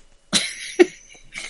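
A fart sound effect: a sudden raspy burst followed by a shorter, lower blurt and a softer puff at the end, with no talking.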